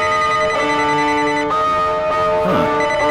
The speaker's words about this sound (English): Never heard this ringtone before.